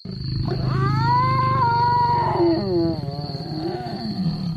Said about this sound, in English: From the strained roar of a lion to the unearthly hoot of an owl.